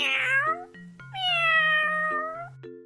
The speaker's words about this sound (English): Cats, they meow. Meow.